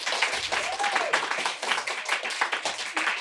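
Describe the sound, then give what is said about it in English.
A live audience claps steadily for a few seconds in response to a question about stress, dense overlapping handclaps at a fairly loud, even level with no talking. “Now I'm going to ask those of you to clap if in the last 2 months you've experienced a lot of stress to the point that it sometimes made it kind of hard to function.”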